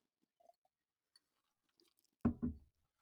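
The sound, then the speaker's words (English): Quiet mouth sounds of someone drinking bourbon: a few faint wet clicks, then two quick, heavy swallowing gulps near the end as the drink goes down, with no talking. “That bourbon hit hard.”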